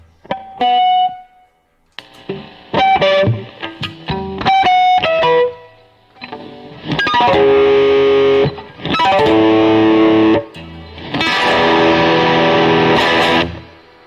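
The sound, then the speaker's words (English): An electric guitar through effects with a noise gate on plays picked notes and short chords, then switches to thick, heavily distorted sustained chords in loud bursts that the noise gate cuts off abruptly into silence, with no one talking. “So you have the noise gate on still. Actually, yes. You can hear it.”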